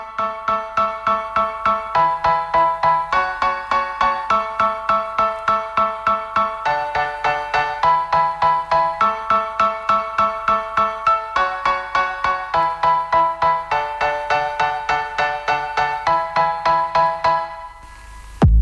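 A music single plays with bright, plucky keyboard-like notes repeating in a quick, steady rhythm, loud, with no voices, then cutting off abruptly near the end.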